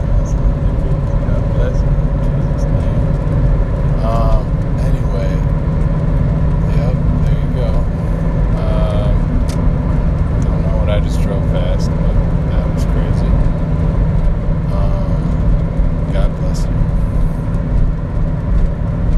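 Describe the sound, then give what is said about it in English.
A small bus rumbles steadily, its low engine drone loud and constant for the whole stretch, with faint muffled voices mixed into the noise. “Wow, it's like a super little bus thing.”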